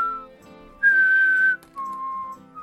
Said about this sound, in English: And by judging by the sound of that annoying ass whistle when you're listening to it back, this is the newest episode of Outlaws.